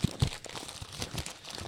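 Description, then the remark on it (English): Paper crinkling and rustling as a mailbag of paper letters is opened, a burst of irregular crackles and crunches with a couple of thumpy handling sounds at the start, with no talking. “Open the Harlan Highway mailbag. The only place in the world where the emails are actually made of paper somehow.”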